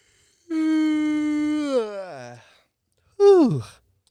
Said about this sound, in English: You yawned to that.